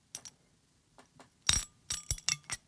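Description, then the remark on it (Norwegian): A glass water bottle clinking as it is emptied: a few quiet taps, then a louder cluster of sharp, bright clinks and knocks, irregular and ringing briefly, with no talking. “Sånn, da har jeg tømt den ene glassflaska.”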